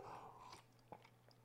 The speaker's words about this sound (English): Excuse me, had to take a sip of water there.